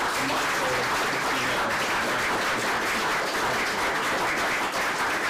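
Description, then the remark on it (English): Sustained audience applause for a distinguished panel, a dense, steady wash of many hands clapping at once, loud and even throughout without pauses or voices standing out. “Please would you give a very warm round of applause.”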